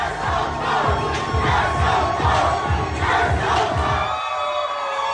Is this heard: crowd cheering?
yes